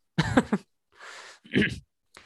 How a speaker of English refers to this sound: And let me clear my throat.